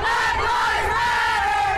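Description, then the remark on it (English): A large crowd of hundreds of black women chants and shouts in unison while marching outside City Hall in Columbus, at an event hosted by Come Together Columbus and Breathe: a loud, sustained wall of raised voices with rising and falling pitch, no single speaker standing out. “A large crowd marched, chanted, spoke up.”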